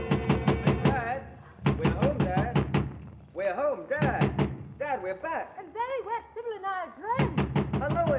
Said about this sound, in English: But suddenly he freezes in terror. Voices he quickly recognizes are clamoring at the front door.